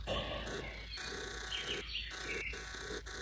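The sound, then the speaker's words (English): Soft birdsong from a Sleep Sounds ambience track drifts through a steady ambient backdrop, with scattered chirps and tweets and no voices. “And we got bird songs on in the background.”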